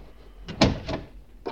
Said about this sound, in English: Close the door.